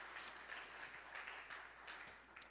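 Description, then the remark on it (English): A crowd applauds steadily, many hands clapping together in a dense, crackling wash that stays fairly even for a couple of seconds with no voices on top. “Can we give them some applause?”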